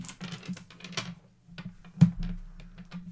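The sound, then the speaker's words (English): Dice clatter as they are scooped back into the pool during a game, a quick irregular run of small plastic clicks with a brief pause and one sharper knock, over a low steady hum. “Okay, so now we need all the dice back in the pool.”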